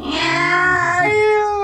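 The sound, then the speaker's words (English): A cat's loud mating yowl, a single drawn-out wavering wail that bends in pitch like a crying child, with no talking over it. “Yeah, yeah, because I've never heard cats having sex before. They sound like screaming children, yeah.”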